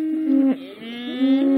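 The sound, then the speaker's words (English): A single cow moos loudly, a long drawn-out low call that dips briefly in the middle before swelling again, with no talking. “If you live in the country, this is a sound that I'm sure sounds familiar.”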